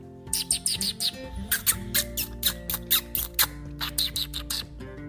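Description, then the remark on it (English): A voice imitates a squirrel with rapid, high-pitched squeaks and chirps, repeated in quick uneven bursts over a low, steady background hum. “maybe try squeaking like a squirrel.”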